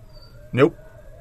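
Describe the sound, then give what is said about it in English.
A single sharp bark from huskies reacting to a dog in the yard, short and fairly loud, rising suddenly out of quiet with a low steady hum underneath, then fading back to near silence. “The Huskies are going on a fucking tangent because the dog's in the yard.”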